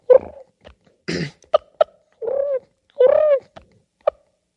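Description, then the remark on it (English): A person on a turkey hunt imitates a wild turkey's purr: several short, rolling, warbling bursts broken up by sharp clicks and brief pauses, mid-pitched and fairly loud. “Do that turkey purr again.”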